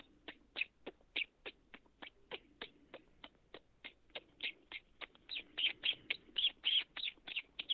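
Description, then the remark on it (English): A trumpet-style turkey call imitates a hen's keek, a squealing high part of a yelp, with a steady run of short, sharp, high-pitched notes, roughly three or four per second, growing louder toward the end. No one speaks. “That trumpet is magnifying this sound right here.”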